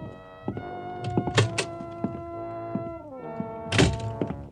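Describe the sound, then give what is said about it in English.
A door opens and then shuts with a solid thunk a couple of seconds later, over a steady sustained musical drone. “Go right through that door there.”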